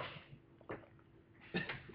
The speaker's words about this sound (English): I was trying to move the mic a little bit because you are kind of low on there.